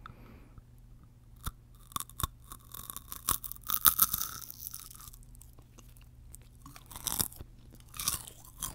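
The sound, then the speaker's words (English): Crisp crunching as a chocolate-covered corn ball is bitten halfway into, followed by several seconds of irregular, snappy chewing crackles with no talking. “I'm gonna bite halfway into it so you can see what it looks like.”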